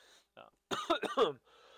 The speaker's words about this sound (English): sorry about the coughing there.